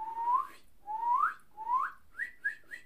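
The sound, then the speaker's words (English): A person whistles an imitation of a cardinal's call: three long upward-sliding notes followed by three quicker, higher chirps, clear and fairly loud with no talking. “And if you do learn how to use their call, which is... I think I'm going to do it right now.”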